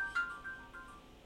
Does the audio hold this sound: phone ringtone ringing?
yes